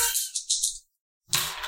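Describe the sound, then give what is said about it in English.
Dice rattle and clatter in a quick burst of clicking taps, fall silent for a moment, then rattle again in a second short tumble, rolled for charm in a game and coming up 7. No voices are heard. “All right, so I rolled a 7.”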